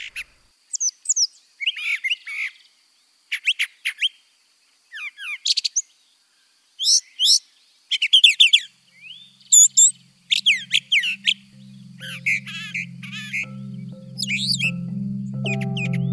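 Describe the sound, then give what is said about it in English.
A brown thrasher sings a rapid string of varied, chirping and whistled phrases in short bursts with brief pauses, clear, while a low rumbling hum builds steadily underneath in the second half. “Listen to this guy, the brown thrasher. He has more than 1,000 song types and can even do covers of other bird songs.”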